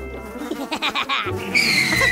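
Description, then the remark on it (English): A horse whinnies in a quavering, wavering call that breaks into a brighter, harsher stretch at the end, fairly loud, with no talking. “Ooh. horses.”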